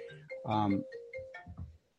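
A mobile phone ringtone plays a brief electronic melody, a steady tone overlaid with a few bright, rising notes, moderately quiet and heard on its own for about two seconds.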